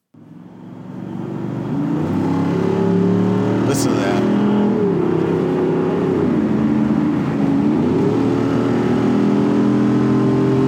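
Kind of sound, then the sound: vehicle, car engine revving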